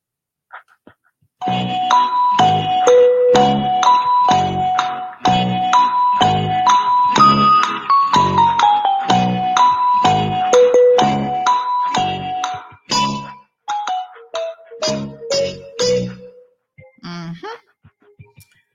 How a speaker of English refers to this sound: Where's my Jeopardy music?